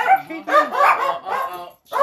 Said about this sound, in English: Hey! Shut up! You too, fat boy! Sorry about my loud ass dog!